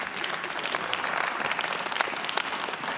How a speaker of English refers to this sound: Would you stand up? You know, you started this clap. Would you stand up?